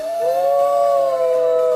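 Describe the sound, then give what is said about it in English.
A single loud wolf howl, one long sustained tone that rises slightly and holds steady for nearly two seconds, clear with no voices or other sounds. “Uh-oh, is it a full moon tonight?”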